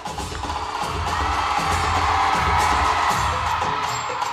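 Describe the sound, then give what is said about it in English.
A huge theatre crowd roars and cheers continuously during a children's stage performance, a dense, loud wall of voices and shouts filling the space without any clear break. “And the young people proceed to give the performance of their lives on that stage to a huge crowd in the theatre.”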